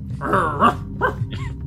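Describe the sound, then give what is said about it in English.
A trained guard dog growls low and lets out a few short, throaty barks in quick succession, fairly loud, with no talking over it. “I'm certain that no one could sneak in the room with them around.”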